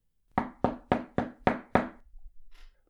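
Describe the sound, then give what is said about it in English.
Six firm knocks on a wooden door in a quick, steady rhythm, each a sharp thud with a short ring, followed by a faint shuffle afterward. “Not even the knock on the door could wake me from my hypnotic daze.”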